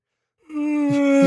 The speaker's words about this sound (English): Sorry, it's a real big yawn there.